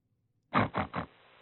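A pig oinks in three quick, rough grunts in a row, with a fourth starting after a short pause. The grunts are fairly loud, with no talking.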